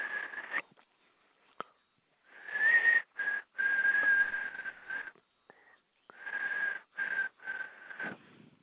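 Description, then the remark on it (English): A person whistles a tune in short bursts, clear, with brief pauses and a few breathy intakes between phrases. No one speaks. “Whistle while you work.”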